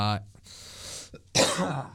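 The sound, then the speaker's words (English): A brief vocal sound, then a hissy breath, then a sudden loud, explosive burst, a cough and sneeze at once. Forceful, it trails off in a rough, breathy tail. “It was like a cough and a sneeze at the same time.”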